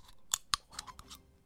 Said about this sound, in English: That's the annoying sound of a Red Bull being opened.